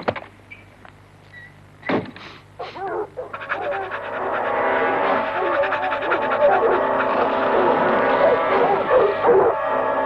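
A couple of sharp dog barks ring out in an old advert, then the dog keeps up a steady stream of excited, whining yelps, fairly loud, with faint mechanical noise underneath.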